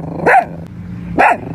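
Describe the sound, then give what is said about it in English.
Two sharp, high-pitched barks from a small brown and white terrier, spaced about a second apart, fairly loud with a low hum in the background. “Patron is a small, very cute, brown and white colored terrier”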